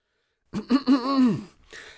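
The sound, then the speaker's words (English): A voice performs a throat clearing: two short voiced grunts run into a longer, wavering hum that rises and falls, followed by a soft breathy exhale. No words are spoken. “At last, Quilby broke the silence, clearing his throat.”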